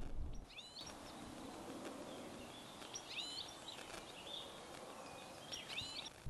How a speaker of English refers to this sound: Now I can see and hear a goldfinch sat on a wire ahead of me.